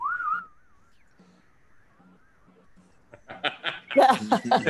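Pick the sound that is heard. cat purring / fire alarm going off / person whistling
person whistling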